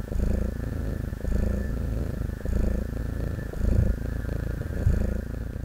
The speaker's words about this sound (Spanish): Sentía su pata pesada, oprimiendo mi frente. Y, como burla, esa cosa empezó a ronronear, como si se burlara de mí.